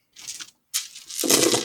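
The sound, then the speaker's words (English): A short rattling burst, a pause, then a longer clattering rush of many dice spilling and tumbling onto a table as an entire bag of dice is dumped out, fairly loud, with no talking. “Noisy dice sounds. That was a lot of dice.”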